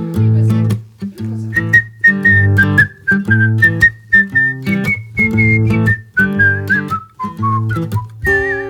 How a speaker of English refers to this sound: I usually do a whistle break there, but I didn't want to whistle into the mic that's been like calibrated so quietly.